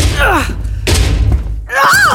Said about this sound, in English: You must not strike the hatch.